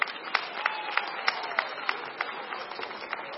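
A church audience at a Sunday morning service cheers for a participant in an on-stage challenge, applauding in a dense, steady wash of clapping, with louder claps landing in a regular rhythm roughly three times a second, and a faint murmur of crowd noise underneath.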